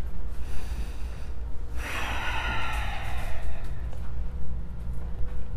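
A slow, deep yoga breath drawn in and pushed out, airy, with one long, breathy rush in the middle of otherwise quiet low-level background hum. No one speaks.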